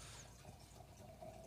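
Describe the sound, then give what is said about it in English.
Wine trickles softly into a glass in a short, steady pour, quiet, with a faint rising gurgle near the end and no one speaking. “Hey, talking about wine, just pour yourself more.”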